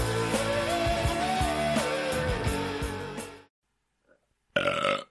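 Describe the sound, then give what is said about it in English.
A long, loud, drawn-out belch, recorded for a soundboard, rumbles for several seconds, then stops. After a brief silence, a second short burst of belching cuts in at the end. “So we can have a soundboard of just us belching, farting, and impersonating Ray Liotta.”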